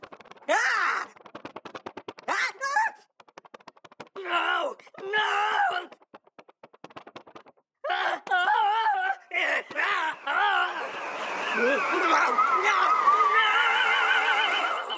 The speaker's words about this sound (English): those all combine to give the impression of sort of akin to he's going down a drain in a bathtub, faster and faster